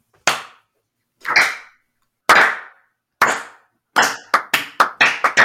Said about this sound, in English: And guys, you get over there at the same time that you see Druk starting to like really try to slow clap.